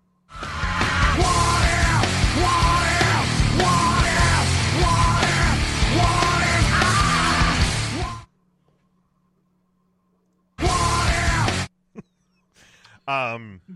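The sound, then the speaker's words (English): A loud, dense rock song snippet from the Scream 3 soundtrack, with a yelled, screaming vocal, blasts for about eight seconds, cuts off to silence, then a second, roughly one-second burst of the same music follows; played as a long and a short version of a show sounder. “You just play the sounder real quick.”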